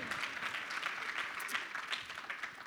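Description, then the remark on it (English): A crowd applauds steadily, many hands clapping in a dense, crackling wash of sound that holds at an even level throughout, with no voices audible. “So, real quick, you can clap for that.”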